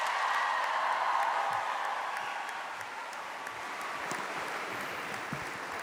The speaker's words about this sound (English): But I'd like you to give you a huge round of applause and welcome to give us the opening address for the first time of his second term, Uachtaráin na hÉireann, President Michael D. Higgins.